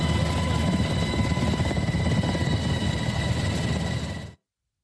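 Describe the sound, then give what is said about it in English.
A U.S. Coast Guard rescue helicopter's loud, steady rotor roar with a rapid low chopping throb and a high whine, running for about four seconds before cutting off abruptly, during a sea rescue of a man thrown from a yacht, as a rescue swimmer is lowered into the water. No voices. “A rescue swimmer was lowered into the water from the helicopter.”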